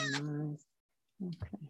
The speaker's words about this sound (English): Here's the cat that was yelling.